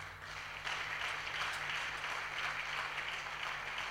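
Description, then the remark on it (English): An audience claps for their pastor in a steady, dense wash of applause that swells after a brief quieter start and holds at an even, fairly loud level, with no speech over it. “The way you are clapping, it looks as if you want him to be transferred somewhere.”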